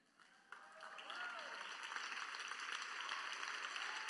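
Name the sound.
polite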